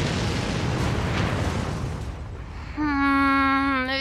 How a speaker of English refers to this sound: Then we'll fly off with the king, detonating the tower behind us for emphasis.